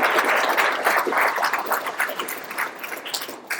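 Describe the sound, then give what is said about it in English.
Steady audience applause for Dr. Kapucha after he spoke, a dense crackle of many hands clapping at once, holding fairly loud for a few seconds and thinning slightly toward the end, with no voices over it. “Well, thank you very much for coming to speak, and we give Dr. Kapucha a nice round of applause.”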